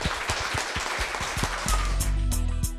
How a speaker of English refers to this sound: Well, thank you very much, guys. If we could ever give our lovely panelists a round of applause, that was amazing.